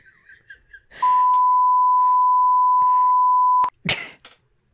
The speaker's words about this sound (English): Instead of getting a beep, should find some like stupid ass noise and just like cover that name.